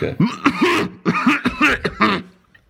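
A forced coughing fit: about six harsh, raspy bursts in quick succession, loud and rough, fading out after a couple of seconds with no talking.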